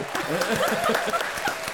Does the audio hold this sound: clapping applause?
yes